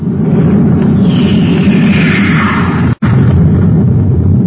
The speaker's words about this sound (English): Hey, listen, spaceship.